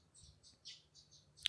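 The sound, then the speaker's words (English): A brown thrasher in a bird bath during dry weather gives a quick series of soft, high chirps at a steady pace, ending in one sharper, brighter note. The bird is faint, with no voices. “All right, so I am watching a brown thrasher in our bird bath, and it is so cool.”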